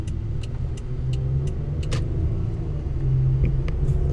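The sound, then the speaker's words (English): A car engine labors with a deep, steady rumble that swells slightly over a few seconds as the car climbs a hill, with faint ticking clicks above it and no voices. “I hope this car makes it up that hill.”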